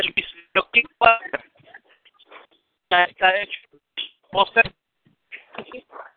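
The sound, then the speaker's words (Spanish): Choppy, breaking-up phone call audio: a thin, narrowband voice comes through in short broken fragments, cutting in and out with abrupt silent gaps between bursts of speech. “Se escucha cortado, compañero. Se escucha cortado.”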